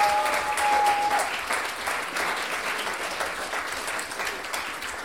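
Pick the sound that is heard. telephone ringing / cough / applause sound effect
applause sound effect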